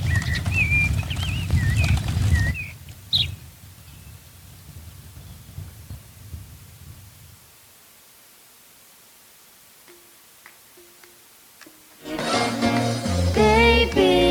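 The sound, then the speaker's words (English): Birds chirp and whistle in quick, wavering calls over a low rumbling background for a couple of seconds, then things fall quiet before music comes in loudly near the end. “There's those birds again.”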